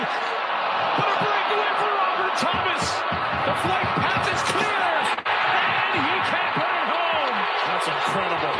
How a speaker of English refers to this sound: CPM, AB, could we run it back from the start now with audio? I want to hear the crowd go nuts.